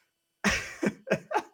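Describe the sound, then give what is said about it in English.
A rough fit of coughing from a person with COVID: one strong burst followed by three quicker, shorter hacks in a steady rhythm, with no talking around them. “I'm trying so hard not to cough because it sounds nasty with my COVID”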